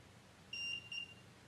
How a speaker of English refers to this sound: Two beeps. I think two beeps is yes.